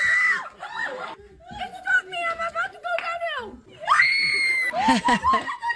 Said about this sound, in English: I'm on a loop-de-loop. Constant screaming throughout. Laughter. My mom trying to close her eyes. Holding on to us. Where's my people to hang on to? He's going crazy. Everybody. My sister-in-law is like, I can't do this.